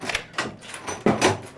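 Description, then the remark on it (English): A key clicks and rattles in a lock, then a door swings open with a knock and scrape, fairly loud, with no voices. “Whoever you are, the door is locked.”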